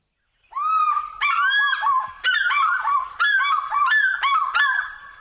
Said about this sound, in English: And this is another bird that is just incredibly evocative of Africa. This is the African fish eagle.